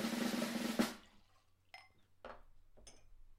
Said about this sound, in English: Let's pour it out. One. I was low-key over we're pouring, it. We're pouring it into our cup. One.